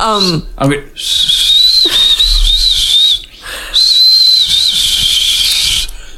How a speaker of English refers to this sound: I'm such a good whistler.